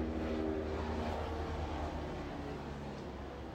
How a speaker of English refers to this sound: There's a helicopter.